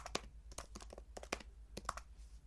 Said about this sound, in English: I'm gonna write that down. Can you hear me typing?